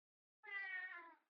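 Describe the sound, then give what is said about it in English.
A single drawn-out meow from a female cat, clear, lasting under a second with a steady, slightly nasal tone, then silence. “Damn it, cat.”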